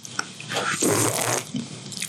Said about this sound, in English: I'm going to sip this in the microphone aggressively.